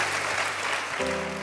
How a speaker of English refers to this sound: Come on, can we give our panel a round of applause tonight?